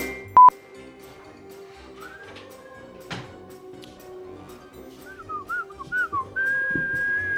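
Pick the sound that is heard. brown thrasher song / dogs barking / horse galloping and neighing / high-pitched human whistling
high-pitched human whistling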